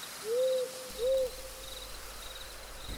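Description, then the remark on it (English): Night-time forest ambience: two low, smooth owl hoots in quick succession over a faint, steady background of chirring insects, with no voices. “Talgrim at this point goes out to a forest to find some solitude and a place to mourn and to pray.”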